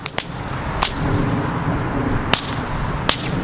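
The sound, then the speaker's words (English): A 6-foot-long whip cracks flames into the night sky four times at uneven intervals during a fire-dancing performance in Chicago, each snap sharp and loud, ringing out over a steady wash of outdoor background noise. “A guy with 6-foot-long whips starts cracking flames into the night sky.”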